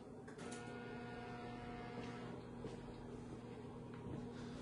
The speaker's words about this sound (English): All right, so let's put it in the microwave for 2 minutes. And here we go.